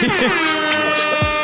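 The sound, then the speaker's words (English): A loud, blaring air horn sound effect holds a steady, brassy tone for over a second, with some lower sliding sounds mixed underneath. “Drop an air horn”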